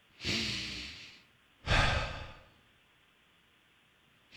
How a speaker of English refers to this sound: Wow. What am I doing right now? Inhale and exhale.